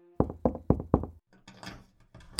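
Four quick, evenly spaced knuckle taps on the door of an interrogation room at police headquarters, crisp, followed by a second or so of softer shuffling and scraping noise as a jail matron lets the visitor in.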